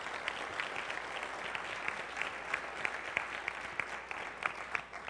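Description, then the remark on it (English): Steady audience applause, a dense patter of many hands clapping at once with sharper individual claps popping out, holding an even level throughout with no voices over it, as a grade 9 student is introduced as a member of a panel. “Round of applause for Olivia.”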